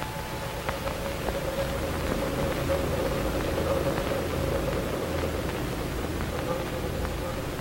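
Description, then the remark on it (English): A steady wash of static hiss fills the whole recording at an even level, with a faint thin tone and a low rumble running underneath. “Fading back into the hiss until there was May again.”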